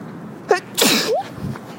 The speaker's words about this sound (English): I have to sneeze.